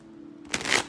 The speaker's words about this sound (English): Oh, I should probably shuffle the cards here, huh?